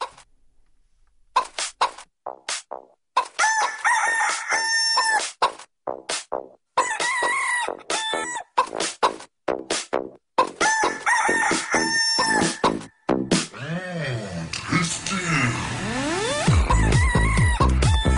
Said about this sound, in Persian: ای الان خود خانم مرغه و آقا خروسه براتون درد دل میکنن.